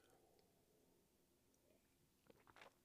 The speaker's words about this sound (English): Let's sip our coffee together and taste and see that the Lord is good.